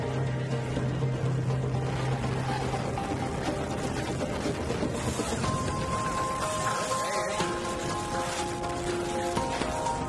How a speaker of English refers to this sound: Nearly half the country is suffering with a brutal mixed bag. Snow, sleet, hail, and severe whipping winds. Definitely one of the worst hailstorms I have ever seen.